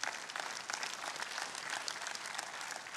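A crowd applauds steadily, many hands clapping at once in a dense, even wash of bright, crackling claps that holds at a constant loudness throughout, with no voices standing out.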